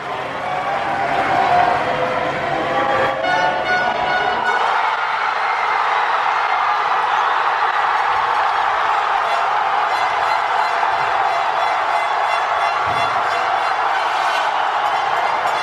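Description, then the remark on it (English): A whole city erupts in cheering after France scores a football goal, maybe its third or fourth, recorded with a microphone stuck out of a window: a dense, continuous roar of many voices that stays loud and steady for the full fifteen seconds without letting up. “And it, you can actually feel, listen really carefully, and you'll hear the depth of the sound of like how much the entire city is cheering.”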